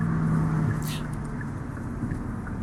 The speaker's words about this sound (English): It's a loud truck. Right. I'm sure y'all heard that, but that was super loud.